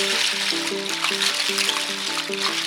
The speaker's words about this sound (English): The water's moving. The water's moving. Here comes the Snake King.